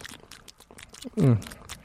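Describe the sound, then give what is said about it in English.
A person chews food containing mayonnaise with the mouth open: wet chewing with smacking and crunchy clicks repeating in an uneven rhythm, briefly overlapped by a short voiced hum partway through. “Here, let's isolate it, Kevin. Okay, this is his. Oh, that's a good chew.”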